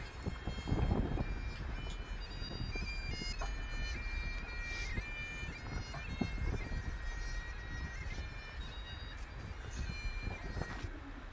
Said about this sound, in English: And then at the top of Cat Bells, it's a bit windy. Are they able to hear the bagpipes? Hopefully, yes. I can hear the bagpipes.